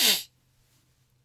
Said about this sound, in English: Sneezes. This is not coming out.